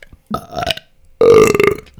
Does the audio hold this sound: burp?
yes